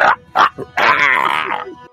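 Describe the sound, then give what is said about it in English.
A loud creature screech in an inn, as the creature bursts out of a man's back: two short yelping bursts, then a long, harsh, high-pitched wail that wavers and slowly fades, with no talking over it. “Loud screech that echoes throughout the inn.”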